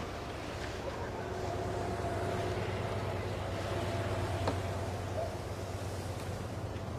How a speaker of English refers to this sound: Sounds like a plow just went by. See, that's good sound design.